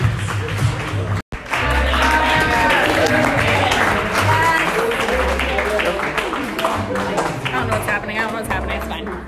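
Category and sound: crowd, audience clapping and cheering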